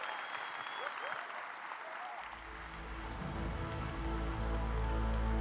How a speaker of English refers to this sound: Let's give them one more huge round of applause, guys. Woo!